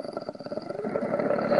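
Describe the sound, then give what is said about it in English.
A person growls with their mouth, a rough, rumbling vocal imitation of an animal that runs continuously for under two seconds and grows slightly louder toward the end. “That's just me doing weird noises with my mouth. You're growling at something.”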